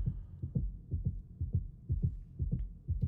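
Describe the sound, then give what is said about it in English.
A deep, steady heartbeat thumps in a regular lub-dub rhythm, about two beats per second, low and muffled but prominent, with no voices over it, heard in the live stream of a new album. “It's the heartbeat going.”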